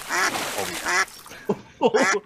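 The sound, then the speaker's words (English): A voice excitedly imitates a duck in a 'shucky ducky quack quack' catchphrase, letting out a quick series of loud, nasal quacking bursts, two longer ones followed by a short pause and a few clipped quacks at the end. “at the end of it all, Booker T is so excited about it that we get a shucky ducky quack quack”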